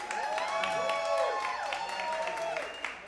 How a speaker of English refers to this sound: Let's give another fantastic group another round of applause.